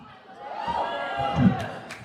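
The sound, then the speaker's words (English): A large crowd at CrimeCon cheers and shouts in a steady, dense roar as the host is welcomed back, swelling briefly midway with a few sharp whoops rising above the noise. “You guys are not nearly as loud as the last crowd.”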